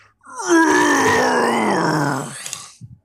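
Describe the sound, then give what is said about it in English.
A very tired-looking dragon creature turns and lets out one long, loud, groaning roar, its rich harmonic tone sagging lower over about two seconds before fading, with a couple of brief soft noises trailing after. “And as the snowball melts away from view, very tired looking dragon creature turns and just lets out a roar.”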